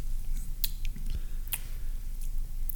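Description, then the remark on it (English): Someone chews a Pocky ghost pepper potato chip, giving off several sharp, crisp crunches at an irregular pace over a low, steady rumble, with no talking. “So yeah, so there were two Reese's Ghost peanut butter cups, and then a Pocky ghost pepper chip, which it's not as hot as a ghost pepper, but it still has some kick to it.”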